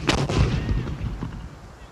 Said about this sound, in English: But Tasman's crew had their own norms and responded by sounding their own trumpets, then firing a blast of fire and smoke from a cannon.